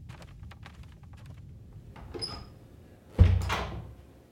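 A bedroom door opens quietly: a thin, brief hinge squeak, then a single muffled thump as it swings and settles, with faint clicks and a low background rumble around it.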